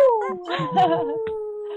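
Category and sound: vocal imitation, people imitating wolf howls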